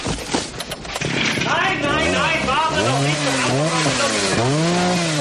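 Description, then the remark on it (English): A loud chainsaw roars, its engine revving up and down in repeated surges over a harsh, gritty buzz that persists throughout, as Carl cuts through wires with it in the 1988 film Die Hard. “And why does he need to cut a wire before Carl chainsaws them?”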